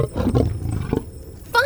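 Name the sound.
lion roaring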